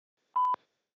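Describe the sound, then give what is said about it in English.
A single short electronic voicemail beep, a steady mid-pitched tone lasting about a fifth of a second, heard alone with silence on either side. “I probably won't respond, but feel free to leave a message after the beep.”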